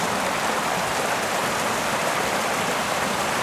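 A small waterfall by a boggy footpath track rushes steadily, a continuous, even roar and hiss of falling water that fills the whole moment without pauses or voices.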